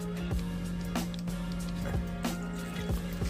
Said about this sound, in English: We got a little mixer here, getting ready to roll. So, all right, we got our packet open. Dump that powder in there.